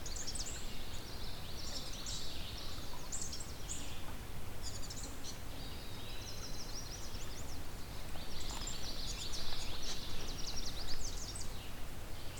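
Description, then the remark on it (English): A bird sings rapid, bubbling, high-pitched phrases that imitate a house wren's song, repeating in bursts with short pauses over a steady low background rumble. “Seems to be mimicking house wren.”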